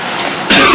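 A single sharp sneeze bursts out abruptly after a moment of steady background hiss, loud and breathy, ending the short clip with no talking.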